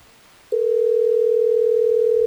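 After a brief moment of quiet, a steady telephone tone sounds as a call is placed by the Hot 101.5 radio show: a single loud, unbroken electronic hum that holds without pause. No one speaks.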